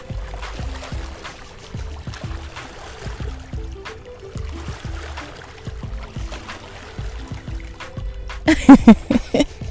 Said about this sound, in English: Now y'all hear the water. I know y'all hear that water.